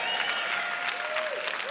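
An audience claps in a steady, dense burst of applause that holds at a fairly even loudness throughout, with a thin sustained tone gliding faintly underneath the clatter of hands.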